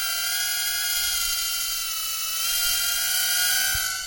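A small, temperamental drone flies, hovering and moving up and down; its motors whine steadily and loudly at a high pitch, holding for about four seconds with slight rises and dips in tone, and no clear crash.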